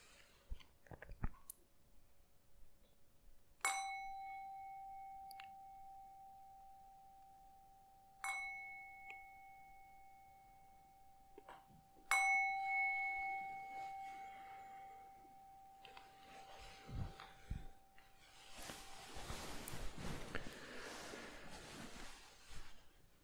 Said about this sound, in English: I'm going to ring the bell 3 times and then we end the meditation for tonight.